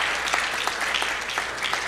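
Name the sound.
audience clapping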